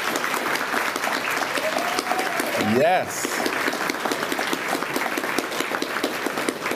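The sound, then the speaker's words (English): An audience claps steadily and densely for honorees, young people aged 11 to 18, a loud, sustained wash of applause, with a brief rising cheer from one voice midway and a short spoken word. “So let's give them a round of applause, all of our honorees.”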